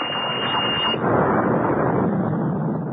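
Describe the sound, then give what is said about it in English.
A loud, sustained explosion in an observatory roars and rumbles for a few seconds, a dense, continuous blast of noise that swells slightly midway without fading. No voices are heard. “After the explosion, the darkness descended again and there was silence.”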